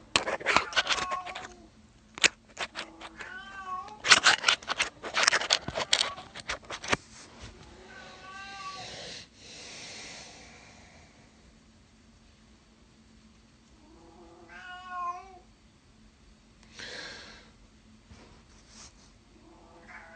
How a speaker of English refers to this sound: The cat is being locked in here with me because she's causing too much shenanigans in the other room.